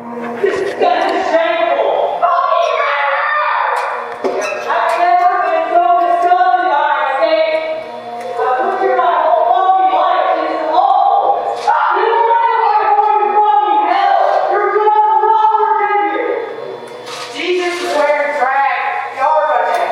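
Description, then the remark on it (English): A crowd of onlookers in the gallery of the Kentucky Senate screams and shouts to the lawmakers below as a bill passes, their raised voices overlapping into a continuous roar in loud, sustained bursts with brief dips between waves for about twenty seconds. “As the bill passed the Senate, onlookers in the gallery screamed to the lawmakers below.”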